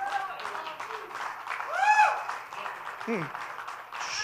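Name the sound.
audience clapping hands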